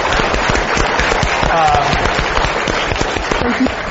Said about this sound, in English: So please give him a round of applause for doing this.